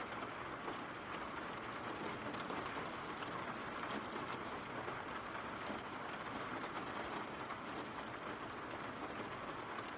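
Steady rain falls without a break, a dense, even hiss with scattered patters across the full ten seconds, fairly soft overall and with no voices.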